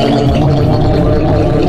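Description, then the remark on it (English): A loud, wet, gurgling noise from a monstrous mass of green spikes as it rushes forward, slurping and gooping continuously for a couple of seconds, thick and bubbling, with no one speaking over it. “This slurping, gooping mass of green spikes rushes at Van Meter”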